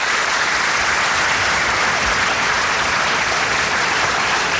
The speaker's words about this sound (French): Il faut l'applaudir chaleureusement, frères et sœurs.